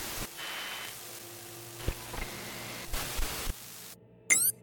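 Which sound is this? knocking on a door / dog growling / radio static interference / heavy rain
radio static interference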